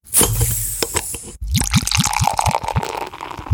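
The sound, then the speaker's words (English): Beer glugs and splashes as it's poured into glasses, two pours in quick succession, with a fizzy foam hiss and rhythmic gurgles rising in pitch as each glass fills, with no talking. “I think it's the perfect time to pour another round and talk about those collaboration brews.”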